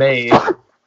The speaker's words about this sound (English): I'm sorry. Bless you, coronavirus.